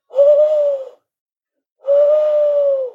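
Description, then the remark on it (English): Two tawny owls hoot, each a sustained, slightly wavering tone, one after the other with a clear pause between them, loud with no other sound. “Yeah, that's two tawny owls there.”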